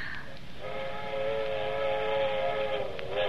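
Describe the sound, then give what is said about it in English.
A train whistle sounds one long, steady, chord-like blast that starts about half a second in and holds for several seconds, moderately loud over a faint rumble, with no voices. “That's what I like best, them train whistles.”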